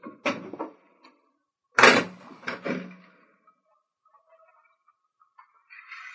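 A window is pulled shut: a short scraping knock, then a louder sliding clunk and a couple of rattling bumps, followed by near silence and a faint rustle at the end.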